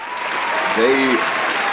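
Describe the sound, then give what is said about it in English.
Soft, polite golf-style applause congratulating the Philadelphia Eagles, a steady even patter of clapping lasting a couple of seconds, with a brief voice murmuring partway through. “can we just take a moment and really give a congratulatory golf cheer for the Philadelphia Eagles?”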